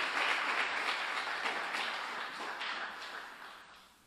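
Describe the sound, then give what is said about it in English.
A crowd applauds steadily, a dense wash of many hands clapping at once, holding fairly loud before gradually thinning and fading toward the end. No voices are heard. “Round of applause”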